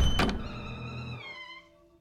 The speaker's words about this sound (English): He let out a screech and charged the door, flinging it open.